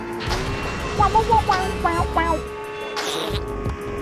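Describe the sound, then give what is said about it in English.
A steady droning car engine in a racing video game hums throughout, with chirpy electronic beeps in the middle and a brief whooshing burst near the end as the car's short-lived nitrous (NOS) boost fires. “Yeah, that NOS, this NOS in this car does not last very long.”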